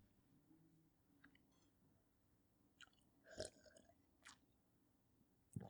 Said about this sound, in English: Water sip.